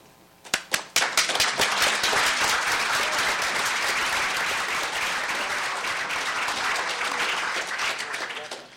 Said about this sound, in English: With their elegant minds, their vision, and their persistent, they are, I think, the perfect creative partners, and I wonder if we might all applaud them now.